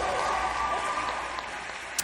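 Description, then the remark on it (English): An audience applauds a question about a Secretary of Education nominee, a dense wash of many hands clapping at once at a fairly even level for the whole stretch, easing off slightly toward the end with no voices standing out. “Pretty roundly applauded.”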